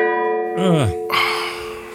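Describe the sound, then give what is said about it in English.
A gong, struck four times, rings out with a steady, sustained metallic tone that hangs through the whole moment, while a swooping vocal sound and a brief noisy burst pass over it. “That's four dongs. That's a four donger.”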